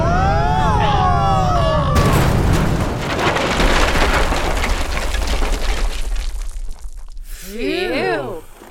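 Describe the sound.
After a few seconds of excited voices, a loud explosion bursts out and a structure collapses, rumbling on with crumbling, falling debris for several seconds. Warbling voices return as it fades.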